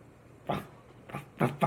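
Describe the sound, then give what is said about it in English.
A person's voice imitates a dog barking with four short, gruff "ruff" sounds: one, a pause, then three quicker ones close together, moderately loud. “Instead of a person in a dog costume going ruff, ruff.”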